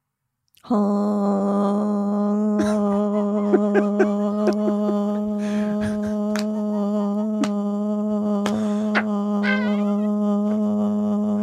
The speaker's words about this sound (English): air horns until someone else talks, please.